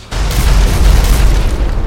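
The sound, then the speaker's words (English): A single loud, unsuppressed gunshot bursts in suddenly and rolls into a deep, rumbling boom that lingers for over a second, heavy in the low end, with no voices. “I suppose you ain't never heard of a silencer, huh?”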